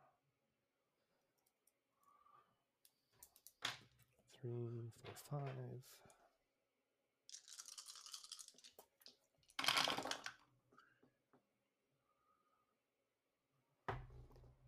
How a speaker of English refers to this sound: Okay, so go ahead and roll your 5 dice.